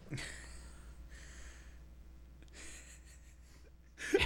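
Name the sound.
person blowing their nose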